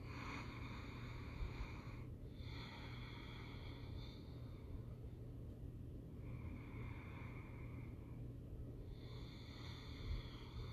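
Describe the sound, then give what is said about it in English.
Slow, deep ujjayi yoga breaths drawn through the nose with a constriction at the back of the throat, each inhale and exhale carrying a soft, raspy, ocean-like hiss. Several unhurried cycles sound over a faint steady hum, with no talking. “Really nice, deep breath that we like to refer to as like oceanic breath, Ujjayi breath.”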